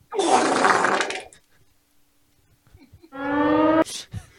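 A huge, wet, sputtering fart sound effect blasts loudly for about a second, followed after a short pause by a brief buzzy, horn-like tone that cuts off abruptly.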